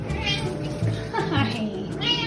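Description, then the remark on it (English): A 14-year-old light gray tortoiseshell female domestic cat meows three times in about two seconds, fairly loud, each call a drawn-out, wavering cry over a low background hum. “She's a 14-year-old light gray tortie with wide green eyes and an adorable round face.”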